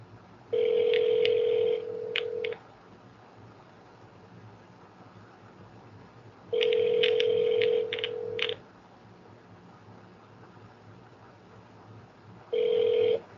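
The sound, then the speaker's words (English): A telephone ringback tone rings over the line while waiting for an answer on a call dialled with star 67: two long rings about six seconds apart, then the start of a third, steady and clear over faint line hiss, before forwarding to an automated voice messaging system. “He might answer because he's expecting a phone call.”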